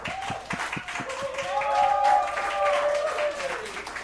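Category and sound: crowd, applause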